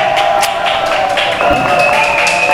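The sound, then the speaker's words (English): A live show audience at the Gator Club venue in downtown Sarasota, Florida, claps and cheers loudly and steadily, with a few whistles and shouts rising above a dense wash of applause that fills the whole moment. “And the crowd goes wild.”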